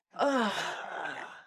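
A single drawn-out, full-body human yawn, a voiced groan that slides downward in pitch and trails off into a long, breathy exhale, with no talking.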